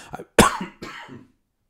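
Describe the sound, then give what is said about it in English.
Two harsh coughs from a person who has been sick for a week, in quick succession, the first sharp and loud, the second slightly weaker, preceded by a faint throaty catch, with silence after. “I've been sick for a week, and I'm at the coughing stage, and I'm trying very, very hard not to cough into the microphone.”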